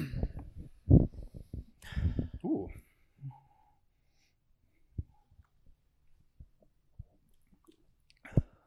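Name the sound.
sipping a drink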